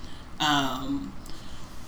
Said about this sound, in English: excuse me, I keep coughing.